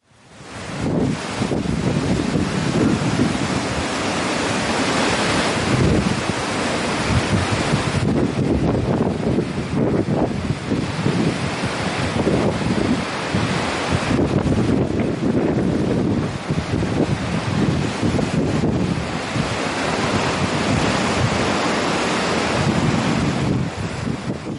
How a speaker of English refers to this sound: showing the wind on the Sea of Galilee, so you can just see for yourself